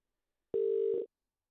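A single short burst of a phone's ringing tone, a steady electronic hum lasting about half a second and heard alone, clear, as a call is made back to a caller.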